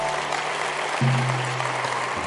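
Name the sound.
audience hand clapping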